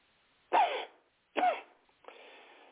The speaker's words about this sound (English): I just lost it, folks. Hold on, I have to cough for a second.